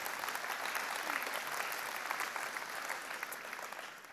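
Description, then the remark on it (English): A church audience applauds together, a dense, steady wash of many hands clapping that holds evenly for several seconds, with no voices rising above it. “You guys can clap for that.”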